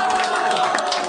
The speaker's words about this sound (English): That's the weirdest applause ever.